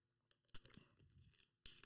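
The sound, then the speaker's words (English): Someone sipping water: a sharp wet slurp, soft gulping mouth sounds, then a second quick slurp near the end. Fairly quiet, with no talking. “Let me just have a sip of this water here.”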